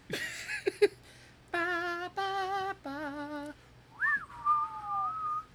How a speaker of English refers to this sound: I thought it was funny because I was like, oh, I'm going to show him up. And then, like, as I was about to start whistling, I was like, of course, now I can't remember what it is.